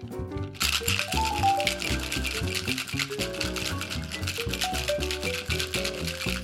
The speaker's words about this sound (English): So I'm going to go with 1/2 ounce of agave nectar, which sort of plays nicely with the tequila. If you don't have agave nectar around, use simple syrup. This all goes into the shaker. And let's give this a good vigorous shake.